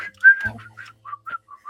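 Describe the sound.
A person whistles nervously, a short, wavering tune of several clear notes, moderately loud, with a brief low thump partway through and no talking.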